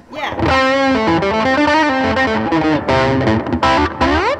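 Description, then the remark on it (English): A distorted electric guitar, played through an Oxblood Keeley distortion pedal, plays a loud, continuous melodic phrase of sustained, gritty notes, ending with a few bent notes that slide upward, with no one talking. “Okay, so I have like a couple overdrives and a distortion. My Oxblood Keeley distortion.”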